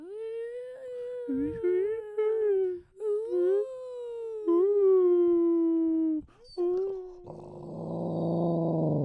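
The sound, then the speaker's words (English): A dog lets out long, low, wavering howls in several drawn-out pulls, fairly loud, starting low rather than with a bark, before the sound roughens into a rumbling growl at the end. “He just starts real low and he just goes.”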